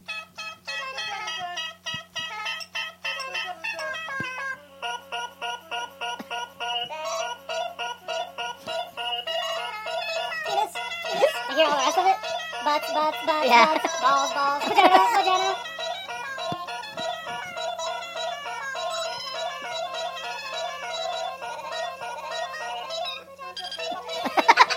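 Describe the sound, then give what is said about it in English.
A remix-style music video made with the VidRhythm app plays from an iPad: bright, beeping electronic tones in a quick repeating rhythm, steady and moderately loud throughout, with a faint low hum underneath and a busier stretch midway. “We bought VidRhythm for the iPad. Awesome. And within probably 15 minutes, this is what Rachel did.”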